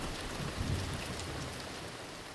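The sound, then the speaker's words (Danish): Heavy rain pours down in a steady, dense hiss across the whole clip, with a faint low rumble underneath that could be thunder. No voices. “Regnen pisker ned, og hverdagen rammer dig, som en spand koldt vand i hovedet.”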